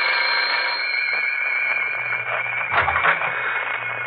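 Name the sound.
doorbell ringing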